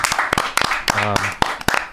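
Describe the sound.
A short round of applause: sharp, irregular hand claps that pop out loudly over a steady murmur, with a brief voiced cheer or whoop partway through.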